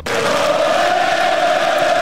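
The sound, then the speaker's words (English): A subdued golf crowd gives off a flat, steady drone for about two seconds, a low murmur with a faint sustained hum running through it, never rising into cheers or applause. “They were making a little noise, but it just wasn't the same thing. It sounded like this.”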